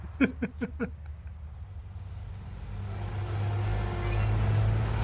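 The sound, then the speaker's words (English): A heavy truck engine rumbles and builds, its low drone swelling steadily louder as it revs, after a few short vocal bursts at the start. “That's the truck that's gonna kill everybody.”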